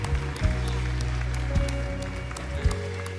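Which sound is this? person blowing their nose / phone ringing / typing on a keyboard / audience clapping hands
audience clapping hands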